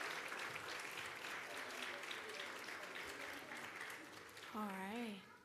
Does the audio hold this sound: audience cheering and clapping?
yes